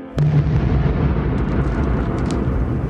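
A sudden explosive boom bursts out, then a deep, thunder-like rumble rolls on loudly for several seconds with crackling debris scattered over the low roar.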